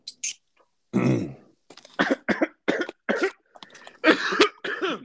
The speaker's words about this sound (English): I can cough on that one.